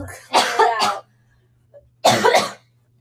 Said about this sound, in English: Let me do a little cough session before we get started. Okay.